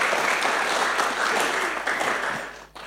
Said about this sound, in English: That's worth a clap, isn't it?